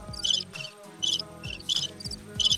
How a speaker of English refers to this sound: Are those crickets? Yeah. Oh. That's how many people laughed at that joke.